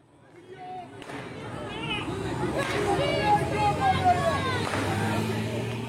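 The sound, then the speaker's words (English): A crowd of residents protesting in Kherson march through the streets of the captured city chanting "Go home", a dense mass of raised voices that swells after a quieter start and stays loud, with a steady low rumble underneath. “The protesters in the captured city continued to march through the streets, chanting, "Go home."”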